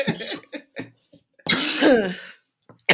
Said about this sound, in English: So what's your, sorry, I cough a lot.